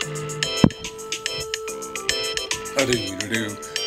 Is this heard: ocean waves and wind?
no